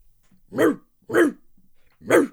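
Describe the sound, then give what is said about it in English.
A dog barks three times at close range outdoors in the middle of the night, loud, full-throated woofs with uneven gaps between them, and a faint low rumble in the pauses. No one speaks. “What the hell was a dog doing out here in the middle of the night?”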